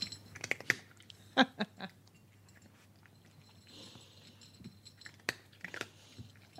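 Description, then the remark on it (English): A cat crunches dry kibble from a bowl, with irregular bursts of sharp crunching and faint clinks against the dish, separated by quieter pauses over a low steady hum. “That's cat eating hard food in a bowl.”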